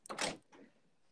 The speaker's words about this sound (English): Are you knocking? Are you knocking? You're going to be in here with me, okay? It's fine. Because I don't appreciate the random little knocks.